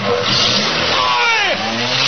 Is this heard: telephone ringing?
no